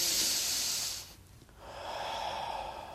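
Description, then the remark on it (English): A slow, deliberate, conscious deep breath: a long hissing inhale, a brief pause, then a steady, softer exhale. No talking. “Who's consciously taking a breath?”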